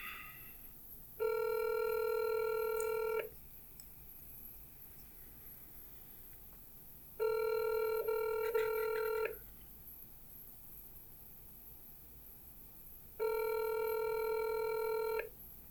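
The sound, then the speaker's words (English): A phone line ringing on an outgoing call: three steady electronic ring tones, each about two seconds long, separated by quiet gaps of several seconds, with no one speaking. “Let's call. See what happens.”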